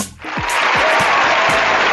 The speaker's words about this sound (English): Thank you so much. You like a little applause, just for showing us. Thank you so much. We enjoy that.